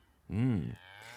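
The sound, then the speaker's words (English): A single short, drawn-out moo with a rising then falling pitch, made by a human voice imitating a cow, fairly loud, followed by quiet background hum. “Cows, for example. Las vacas. Cows would moo.”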